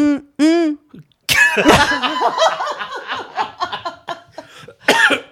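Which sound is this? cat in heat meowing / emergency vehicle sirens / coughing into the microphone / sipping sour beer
coughing into the microphone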